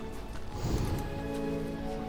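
A horse gives a brief breathy snort amid soft shuffling hoof sounds, set over a steady humming background; no one speaks.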